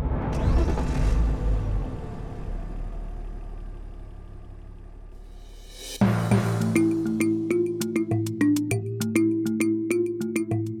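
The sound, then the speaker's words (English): A car engine turns over and rumbles loudly, then its low drone steadily fades as the car pulls away, before rhythmic music abruptly takes over. “Then she headed out to the car.”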